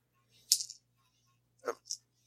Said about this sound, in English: Rolled onto my pile of dice, which is helpful. The most uneven surface.